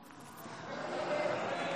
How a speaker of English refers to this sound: Can we have a drum roll, please? If you all do a drum roll on our...